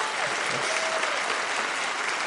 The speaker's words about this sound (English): Round of applause in here if you have kids. Round of applause if you have kids.